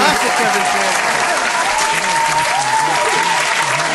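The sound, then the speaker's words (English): A crowd applauds steadily, a dense, continuous patter of many hands clapping, with murmuring voices faintly mixed in underneath. “We need a round of applause”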